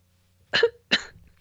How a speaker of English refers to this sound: I have a cough.